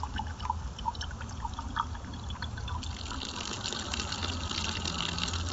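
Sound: water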